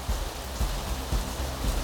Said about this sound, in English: Rain came down while we were there, and for us, it was a mix of emotions.